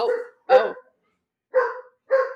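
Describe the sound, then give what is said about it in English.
Several sharp, rough dog barks come in quick bursts with short gaps between them, loud, from excited dogs in rowdy play running around in circles inside a house. “Sorry, my dogs are going hard in the background.”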